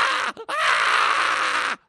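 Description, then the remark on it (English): A voice imitates a screaming pony: a short harsh shriek, a brief break, then one long, loud, raspy scream held at a high pitch before it cuts off abruptly. “The hell's wrong with that pony?”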